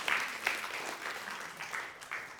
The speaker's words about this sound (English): That is the good news story. I think we can clap that.